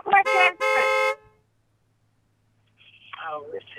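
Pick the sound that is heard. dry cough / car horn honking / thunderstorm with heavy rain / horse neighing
car horn honking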